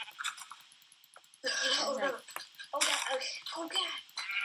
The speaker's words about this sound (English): Yeah, I see some sheep, so I'm just punching them to death to get some wool. There's, like, three sheep over here, just enough for one bed.